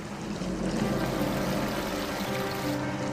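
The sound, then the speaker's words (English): A steady wash of running water from a small mountain stream trickling and burbling over rocks in a canyon with steep walls, continuous and fairly loud with no voices. “You've got this little stream, you've got these steep canyon walls.”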